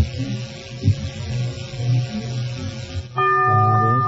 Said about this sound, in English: The bell is tolled. I'm sorry.